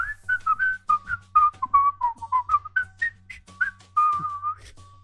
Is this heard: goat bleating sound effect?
no